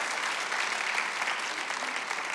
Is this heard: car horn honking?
no